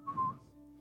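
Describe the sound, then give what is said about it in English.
A person whistles briefly, a short bright note or two rising out of a low background hum, fairly clear, with no talking. “And they'd run in there real fast. Just whistle.”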